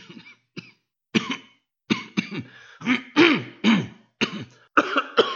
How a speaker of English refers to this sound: Do you mind, whoever it is that's coughing so much? I'm trying to have a moment here. I'm sorry, son. Maybe there's something stuck in my throat. Or in my lungs. It can't seem to breathe. But I'm okay.